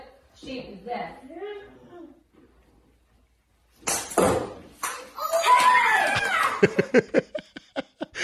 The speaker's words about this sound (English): The mom reacted well. The kids screamed and started running upstairs.